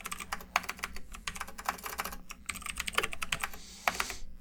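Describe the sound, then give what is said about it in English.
Rapid typing on a computer keyboard, a dense, uneven stream of sharp plastic key clicks with no voices, occasionally punctuated by a heavier keystroke. “Typing like a madman. That's me.”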